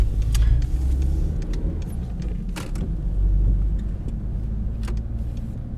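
Steady low rumble inside a car driven by a gym teacher, taking a pupil to a handball hall as the rain picks up, with a constant engine and road drone and a few brief clicks and ticks scattered over it, no voices.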